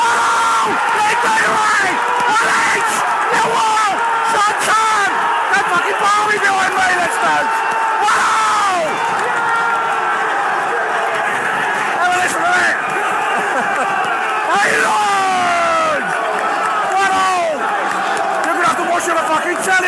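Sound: football stadium crowd roaring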